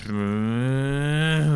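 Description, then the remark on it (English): A voice imitates the gear change of a car with a ZF 8-speed transmission: one low, steady, buzzing drone held for over a second, its pitch shifting slightly upward near the end. “It just doesn't sound right when it changes gears.”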